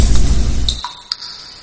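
Metal pipes being banged, with three or four sharp clanks that each leave a high, bell-like ring fading out, over a low rumble that drops away halfway through. No one speaks.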